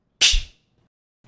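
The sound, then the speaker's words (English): A single sharp, loud slap to the face lands with a crisp, stinging crack that fades quickly into silence, followed by a brief faint murmur at the very end. “Here, real quick, just slap me in the face.”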